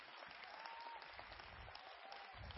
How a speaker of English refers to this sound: Somebody clap your hand and praise God.